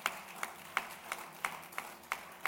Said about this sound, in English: Give the Lord another mighty clap of hands.